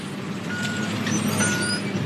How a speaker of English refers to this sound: Heavy machinery, including a large red tractor, pulls a gigantic scarifier across the ground. Bushes and shrub are crushed.